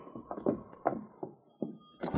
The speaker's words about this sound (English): Here we are. I'll open the door.